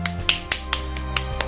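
Brief clapping: about seven sharp, close handclaps in quick, slightly uneven succession over a steady low background hum, with no voices.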